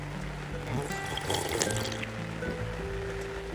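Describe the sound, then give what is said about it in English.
Nescafe coffee poured steadily into a cup on a porch, a continuous gurgling, splashing stream lasting a few seconds over a low background hum, with no talking. “Coffee cheers my friends around the world to a beautiful, beautiful day.”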